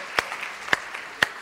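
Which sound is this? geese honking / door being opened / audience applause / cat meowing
audience applause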